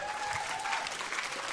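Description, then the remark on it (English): A standing audience gives Jesus a big clap: many hands clapping at once in a steady, dense wash of applause, loud throughout, with a faint murmur of voices mixed underneath. “And I want you to give, when you stand on your feet, could you give Jesus a big clap, somebody?”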